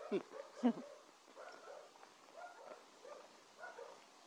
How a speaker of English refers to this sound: Hi, puppy dogs that are inside.